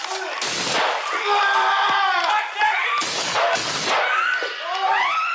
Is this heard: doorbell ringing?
no